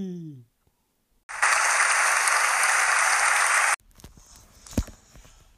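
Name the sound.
audience applause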